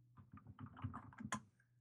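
Quick, uneven clicking of keys on a computer keyboard as a search is typed in, a short burst of typing that lasts under two seconds, fairly soft, with no one talking.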